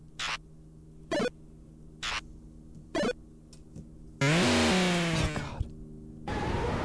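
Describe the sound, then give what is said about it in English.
Retro video game enemy death sound effects: four short, sharp bursts of noise at a steady pace, then a longer, louder crunching blast with warbling tones, ending in hissy static. “Enemy deaths.”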